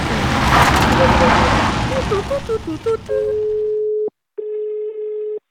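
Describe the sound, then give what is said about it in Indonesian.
A quick series of short phone keypad beeps over a noisy background as someone dials a call on their phone, then a steady ringback tone sounds twice with a brief pause between, clear. “Pakai pakai telepon gua aja. Pasti ada.”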